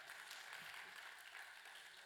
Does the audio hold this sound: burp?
no